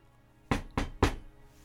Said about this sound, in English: A knock on the door of your hotel. One of the guards.